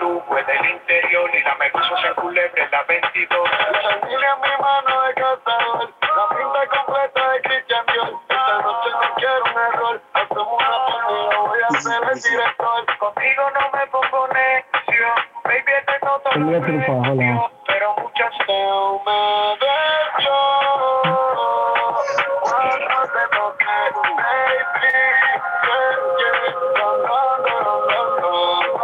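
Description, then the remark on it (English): A song plays through a phone speaker, thin and tinny with no deep bass, the melody and beat running loud and steady for the whole stretch with nobody talking over it. “But that song is bad, bro.”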